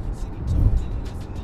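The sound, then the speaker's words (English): A vehicle spewing black exhaust rumbles past, its low roar swelling to a peak midway and then easing off, with faint voices in the background. “Now, that guy just contributed to global warming by himself.”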